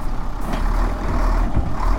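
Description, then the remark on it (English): A large Scania truck like a circus vehicle, carrying a lot of horses, rumbles past with a deep, steady engine drone and a broad wash of road noise, loud and continuous for a couple of seconds with no voices. “Here comes another one of those huge, it's like a sort of one of those circus vehicles, Scania.”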